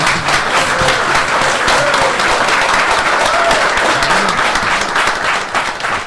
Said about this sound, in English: And I think I speak for everyone here that there was a whole lot of work that went into setting this stuff up that you can't see behind the scenes or listen to the podcast. And I'd certainly like to hey, let's give you guys a round of applause.